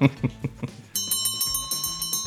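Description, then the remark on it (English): A brief burst of voice gives way to a loud bell ringing rapidly and continuously for over a second, its bright metallic clangs repeating in quick succession like a closing bell. “Oh, ladies and gentlemen, there's the closing bell.”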